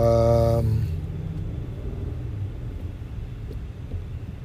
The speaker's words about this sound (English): Sorry, I'm stuck in traffic. Looks like there's a bad accident on the highway, so I'm trying to focus on the driving and focus on this conversation at the same time.